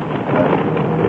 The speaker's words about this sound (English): What is it? The engine. Something's wrong with the engine? The engine seems to have lost its harmony. Yes, the harmony is gone.